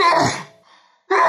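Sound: sneeze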